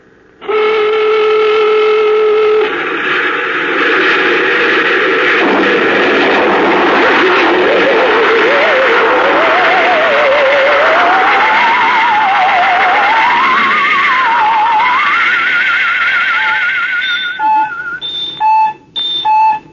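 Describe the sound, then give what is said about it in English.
A rocket ship blasting off on the navigator's signal: a steady droning tone gives way to a loud, continuous roar with a wavering, rising whine, ending in a few short electronic beeps. “Prepare to blast off on navigator signal.”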